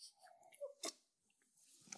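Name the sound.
sipping wine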